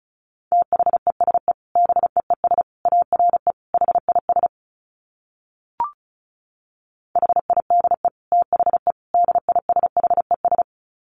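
Rapid Morse code at 35 wpm: a single steady mid-pitched tone keyed on and off in fast clusters, broken by a pause with a brief click before the keying resumes. No voices.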